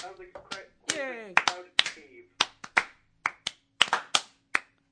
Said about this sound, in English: The golf clap. We got the golf clap for you.